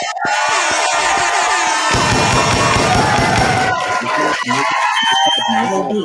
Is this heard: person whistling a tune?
no